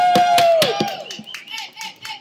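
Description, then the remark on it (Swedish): A short burst of applause from a small group welcoming a guest to a live interview at Järvaveckan: sharp, uneven claps with a high sliding whoop over the start, thinning out and fading within about two seconds. “En lite bättre applåd än så kan han få.”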